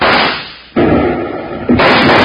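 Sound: gunfire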